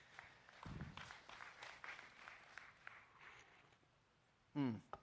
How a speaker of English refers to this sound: That was awkward applause, like you didn't know if it was okay to clap again.